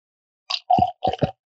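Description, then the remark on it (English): Maker's Mark straight bourbon Kentucky whiskey glugs from a giant Costco bottle into a glass in three or four quick, hollow, mid-pitched gurgles with brief gaps between them, and no talking over the pour. “I'm going to pour it real quick. Get a little pour.”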